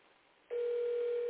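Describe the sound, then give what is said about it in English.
After a moment of faint line hiss, a loud, steady electronic phone tone starts abruptly and holds unbroken to the end, an outgoing call ringing unanswered. No one speaks. “But she's not answering her phone.”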